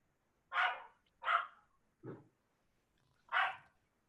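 A dog barks four times in short, sharp bursts with uneven pauses between them; the third bark is lower and softer. No one speaks, and the background is otherwise quiet.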